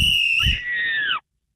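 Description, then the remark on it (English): A coach's whistle gives a loud, shrill blast held for just over a second, its pitch jumping slightly partway through before cutting off sharply, with no talking. “If you blow that whistle one more time.”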